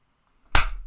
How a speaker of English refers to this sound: Are you ready? All right. I'll close one eye. Close one eye. I'll close both hands. One, two, three, clap.